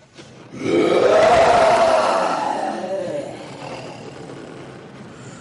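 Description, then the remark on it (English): A puppeteer's voice imitates a tiger's roar for a Broadway stage show in New York: a long, throaty, rising-then-falling growl that swells loudly, holds for about two seconds, and trails off into a rough, fading rumble. “All right, so let's hear a tiger roar, guys.”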